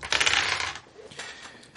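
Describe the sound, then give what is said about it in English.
A quick clatter of two dice tumbling and rattling across a hard surface, a bright burst that settles into lighter clicks before coming to rest, with no voices. “So you are hitting him with 4 bullets, so go ahead and roll those 2 dice 4 times.”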